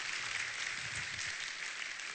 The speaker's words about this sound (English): Let's give him a round of applause as he's seated today. Thank you so much.